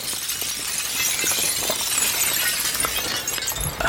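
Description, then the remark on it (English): Delicate fine glass shatters in a loud, continuous cascade, countless shards crashing and tinkling together for a few seconds with no voices present. “Inside, you see several parchments that are rolled up and a ton of just shattered fine glass.”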